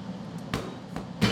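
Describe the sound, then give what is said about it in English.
Noodle dough for hand-pulled noodles being beaten onto a table to line up its gluten, heard as a few sharp, heavy thuds at irregular intervals, the last one loudest, over a steady low background hum with no talking. “That's why it bang the noodle and twist the noodle and bang, bang the noodle makes a lot of interesting noise.”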